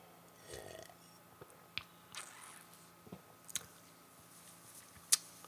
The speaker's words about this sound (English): Thrust, it's probably the best IPA out there right now. At me all you want. I'm going to have a sip and then I'll tell you what to eat with it.